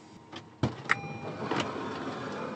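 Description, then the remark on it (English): A man who has just come out of his house climbs into a car: a solid door thunk, a sharp click, then shifting and rustling in the cabin over a low steady hum. No one speaks. “he's about to get in the car.”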